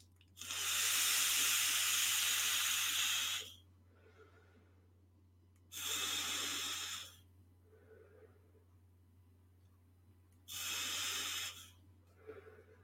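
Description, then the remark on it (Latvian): Airy hissing draws on an e-cigarette mod set to 70 watts, chain vaping: three long loud pulls separated by quieter breathy exhales, with a faint steady hum underneath and no talking. “Nu, man te bija pieprasījums pēc chain vaping. Ja? Nu, tu pamēģināsim. Nu, pamēģināsim ar pieciem. Ja? Pieciem vilkumiem. Pieci tvaiki.”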